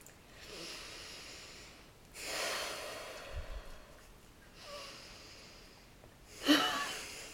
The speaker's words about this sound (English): So, let's end with 3 deep breaths and then we've got a lovely quote for you all.